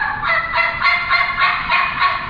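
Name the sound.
turkey gobbling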